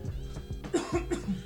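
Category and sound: human body sound, person coughing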